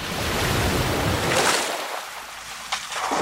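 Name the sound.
ocean waves and wind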